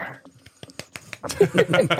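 A golf clap: a handful of soft, light hand claps tap out at an unhurried pace, then voices come in and carry on over the rest of the moment.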